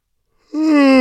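A loud yawn into a microphone begins abruptly after a moment of silence, swelling into a steady, drawn-out voiced tone that carries on to the end.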